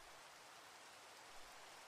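Steady rain falls in a dense, even hiss with no gaps, a soft patter spread across the whole clip at a constant level, with no voices.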